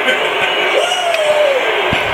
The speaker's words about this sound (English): I love the boos, man. I love the cheers, baby. Keep them coming. Niners gang, keep them coming.